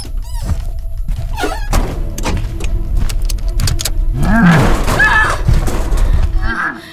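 Heavy body thuds slam against a truck hood, several dull impacts close by, mixed with strained vocal cries and growling sounds in the second half.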